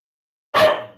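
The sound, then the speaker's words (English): A single sharp dog bark rings out after a moment of silence, then trails off quickly. No one speaks. “My dog wants this guy fired too.”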